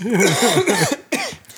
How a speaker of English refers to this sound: I'm not dying. I am just, I have a cold. Coughing right into my microphone. I did not cough in the microphone. I specifically pulled the microphone away, coughed into my hands,